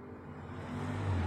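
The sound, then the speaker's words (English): A powerful car engine roars past, its deep rumble rising in pitch and swelling louder over a second or so. No one speaks. “That's a badass car you guys just heard fucking going by there.”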